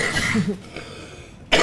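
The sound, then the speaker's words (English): A short cough with a raspy throat sound, followed after a brief quiet moment by a sudden loud burst at the end. “Stop coughing”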